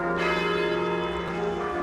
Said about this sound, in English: Bells are tolling in cathedrals across the UK on this D-Day, the first day of the transition from Queen Elizabeth II to King Charles III.